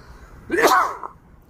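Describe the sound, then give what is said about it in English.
A single fairly loud sneeze erupts out of near silence: a short voiced intake that bursts into a sharp, hissy blast, then fades quickly. “Pardon me. Excuse me.”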